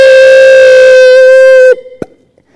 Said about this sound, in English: Who likes the emergency broadcasting system? Raise your hand. No, you don't like the siren that goes off? Or what about that annoying little beep that comes across the radio right in the middle of your favorite song?